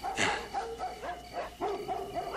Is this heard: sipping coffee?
no